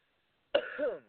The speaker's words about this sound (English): as I cough up my lungs.